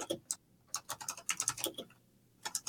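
Rapid bursts of keyboard typing, close and crisp, with clustered clacks in uneven runs and a short pause before a final flurry of keystrokes.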